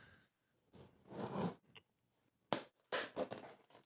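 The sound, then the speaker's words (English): Crackly bursts of Star Wars wrapping paper being torn and crinkled as a wrapped package is opened, coming in several loud rips and rustles separated by short pauses, with no talking. “And he sent us a package, so let's open it.”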